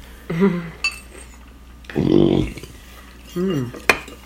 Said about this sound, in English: And this here, they have a microphone, a high sensitive microphone right beside the plate of food, so you hear all the chewing, all the sounds of the chewing. And the food is good, like sashimi, lobster, crab, and you just can't stop watching it.